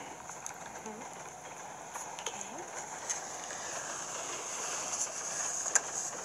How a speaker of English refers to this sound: You can hear the train sound.